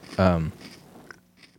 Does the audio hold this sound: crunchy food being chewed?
yes